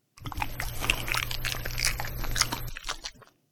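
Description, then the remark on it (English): A dog chews a banana, a steady run of soft, wet bites and squishy crunches lasting a few seconds, with no one talking. “Banana. That's the banana. I spend way too much time feeding our dog.”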